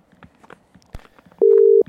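A single steady electronic telephone tone sounds loudly near the end as a call is placed, a flat hum about half a second long, preceded by soft faint shuffling and one sharp thud.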